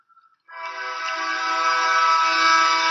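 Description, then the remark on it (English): A slow-moving train blasts its horn in one long, steady, loud note after a brief faint tone, growing slightly louder as it sounds without pause. No one talks. “This is a super slow train. It's going to fuck us up here in like 30 seconds.”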